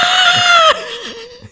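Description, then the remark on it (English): A person yells at the top of their lungs: one long, loud, high-pitched shout that breaks off abruptly into a quieter, wavering vocal trail. “I heard someone yell shiitake mushrooms, but I don't see anybody.”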